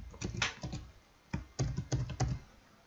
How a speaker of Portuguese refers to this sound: Aqui eu vou digitar uma senha.